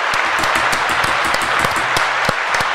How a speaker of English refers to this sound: Good. That's a clap. Everyone's clapping.